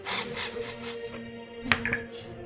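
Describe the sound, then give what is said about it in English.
Dice rattle and tumble across a wooden surface in a quick burst of clattering as a Constitution saving throw is rolled, then settle with two sharp clacks near the end; no one speaks, only a faint steady hum underneath. “You have maintained your concentration, and now roll a Constitution saving throw, please.”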